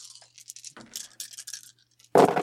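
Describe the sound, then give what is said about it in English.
Six dice rolled in a game rattle and clatter for about two seconds, a quick run of bright, hard clicks, then a louder burst as they tumble to a stop. “I am rolling six dice.”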